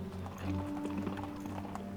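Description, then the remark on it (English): Horse hooves clip-clop at an unhurried, uneven pace over a steady low rumble, like a carriage rolling along. No one speaks. “You get to the edge of the towers, they look to be empty, and the horses stop.”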